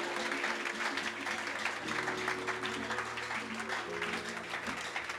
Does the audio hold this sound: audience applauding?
yes